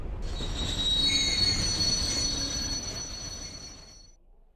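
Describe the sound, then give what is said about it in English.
Metal wheels screech in a high, sustained squeal over a heavy rumble as a train brakes, the noise fading away as it comes to a halt. No voices. “We need to stop the train and find the inspector.”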